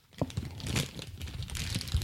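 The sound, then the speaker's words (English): A package containing a diaper is torn open, with continuous crinkling and rustling of plastic or paper wrapping and a few sharper crackling bursts over about two seconds, with no voices. “Here, let's just open this one real quick.”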